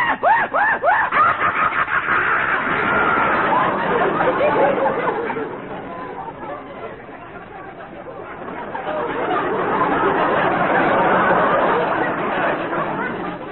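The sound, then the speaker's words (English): A person vocally imitates jungle animals in quick succession: a wavering, frightened horse-like whinny, then rapid excited monkey chatter, and later a loud, shrill hyena-style screech, all fairly loud. “The frightened whinny of our horses. The wild chattering of the monkeys. The maniacal scream. screech of the hyena.”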